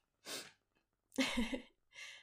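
A loud sneeze bursts out, framed by a quick breathy sniff before it and a shorter noisy exhale or second sneeze right after. No one speaks.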